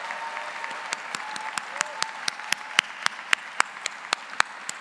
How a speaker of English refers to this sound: Please join me in a round of applause for the MS graduates. Congratulations.